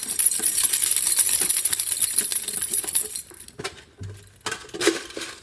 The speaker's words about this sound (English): Oh, sick. Check this out. Is that money? Tons of it. But it's all in coins. Grab your backpacks, scoop whatever you can into them.